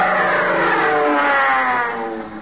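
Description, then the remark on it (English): A new military plane, called a HICTIG, roars past at an airport, its loud droning engine tone sliding gradually downward in pitch as it goes by, then starting to fade toward the end. No voices. “That's one of them new military planes.”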